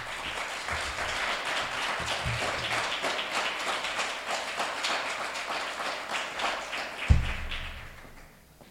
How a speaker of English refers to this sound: Let's bring her to the rostrum with an incredible round of applause.